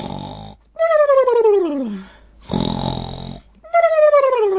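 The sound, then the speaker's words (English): A storyteller imitates an alligator's cartoonish snoring: two cycles of a raspy, rumbling inhale followed by a loud, falling whistle on the exhale, with short pauses between and no speech. “The alligator started to snore.”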